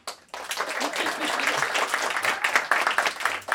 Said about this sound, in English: You can clap after each, you know what I'm saying, after each name clap. You know, we're not going to do a graduation style where I say everybody. After each name, you can clap.